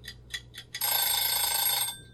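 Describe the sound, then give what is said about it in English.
A timer sound effect: four quick ticks, then a bright, loud electronic ring with shimmering high tones that lasts about a second before cutting off. No one speaks. “All of this is going to be cut out for the timer drop.”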